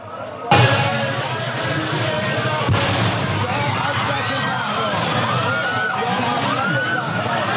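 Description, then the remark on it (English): A sudden loud explosion near very crowded streets in Iran is followed a couple of seconds later by a second sharp blast, then a crowd of people screaming and shouting in panic, their cries rising and falling continuously. “Hear the fear and the screams there.”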